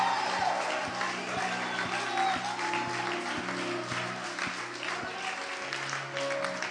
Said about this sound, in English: Well, give Jesus a big hand clap. Come on, he's why we're here.